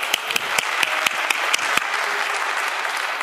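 Audience applause: a steady wash of many hands clapping, with a few sharper, louder claps standing out in the first two seconds before the clapping settles into an even patter. No one speaks.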